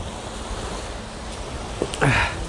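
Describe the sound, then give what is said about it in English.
Steady, cold coastal wind at the seafront by a beach rushes across the microphone with a low, rumbling surf-like roar beneath it, constant throughout, broken only by a short, brighter sound near the end. “Get the coastal wind coming in.”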